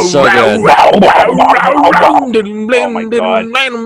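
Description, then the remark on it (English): A man vocally imitates a growling bass guitar solo from the end of a song, producing loud, gravelly sustained notes that bend and slide in pitch for a few seconds. “And he just goes fucking nuts at the end of that song. Yeah. It's fucking insane. He makes it growl.”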